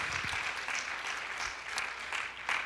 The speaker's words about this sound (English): If you're thankful for the grace and the mercy of God, would you just begin to clap your hands and begin to tell the Lord, Lord, I'm so thankful for your sacrifice today.